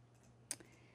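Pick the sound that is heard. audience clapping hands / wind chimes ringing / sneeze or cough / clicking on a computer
clicking on a computer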